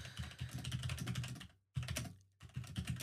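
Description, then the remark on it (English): Rapid, steady typing on a computer keyboard, a dense run of clicky keystrokes broken by two brief pauses before resuming. No one speaks. “Now, I'm typing something right here.”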